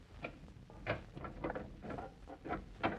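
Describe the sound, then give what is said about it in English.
Someone picks a simple door lock: a series of small metallic clicks and scrapes, irregular and fairly quiet, with brief ringing tinks among them and no talking. “Oh, it was just a simple door lock.”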